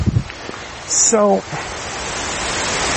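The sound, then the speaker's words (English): Wind roars into the microphone outdoors as a steady, hissing rush, with a few low buffeting thumps at the start and a brief higher-pitched tonal sound cutting through around one second. “Windy stretch. Everyone knows it's windy.”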